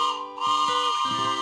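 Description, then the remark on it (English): A toy train whistle of the Bible train sounds a loud, steady chord of several bright tones for a second and a half, with a few lower notes stepping up and down partway through. No voices. “Oh, yay! That's the Bible train!”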